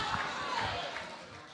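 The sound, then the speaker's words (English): A crowd murmurs and chatters while scattered sharp hand slaps ring out as people high-five each other, a few claps standing out over the steady din of voices. “Slap your neighbor, high five, and tell him this is how we do it.”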